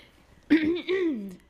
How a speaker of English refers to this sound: Hey guys. Let me clear my throat. Welcome back.